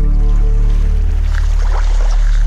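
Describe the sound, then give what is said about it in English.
Water waves slosh and wash up on a shore over a constant low, droning rumble, the splashing swelling midway through before easing off. No one speaks. “You can hear the water there rolling up on the shore”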